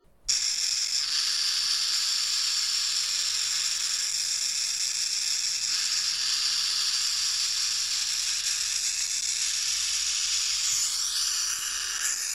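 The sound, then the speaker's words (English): A burrowing owl's steady, buzzing hiss that mimics a rattlesnake's rattle, sustained and fairly loud for about eleven seconds with a dry, sizzling texture and no talking. “If anyone comes snooping about its burrow, they will mimic the sound of a rattlesnake's tail. This hiss slash rattle is pretty effective at warding off intruders.”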